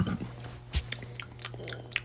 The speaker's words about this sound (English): Also, for those of you that don't know, I am drinking water.